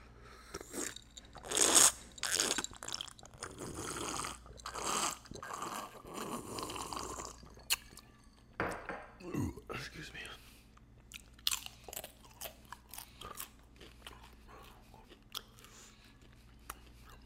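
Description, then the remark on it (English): Loud, wet smacking and crunching of food being chewed, with dense irregular bites at first, then thinning into sparser sharp smacks and crackly clicks. “Smacking, niggas be smacking, smacking.”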